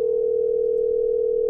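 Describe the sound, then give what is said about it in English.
A steady electronic telephone tone hums without a break, like the ringing heard on an outgoing call. It is loud and clear, with nothing else and no voices around it. “What's the ringing noise? Who's calling someone?”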